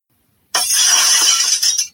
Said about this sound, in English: And can someone clean up that glass he dropped?